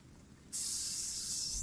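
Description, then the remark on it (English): A gentle, steady hiss of a sleeping snake at Platos's shrine starts after a brief quiet moment and holds evenly to the end, soft, with no talking. “You can hear the gentle hissing of a sleeping snake.”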